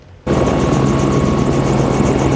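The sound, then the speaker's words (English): A helicopter roars loudly, its engine drone steady with a rhythmic rotor whir, kicking in abruptly after a brief quiet moment and continuing without any voices; it carries guests off Sasquatch Mountain Ski Resort near Agassiz, stranded by a landslide. “A landslide left them stranded on Sasquatch Mountain Ski Resort near Agassiz, and with news it could take 5 days to clear the road, many guests hopped on a helicopter to get back home.”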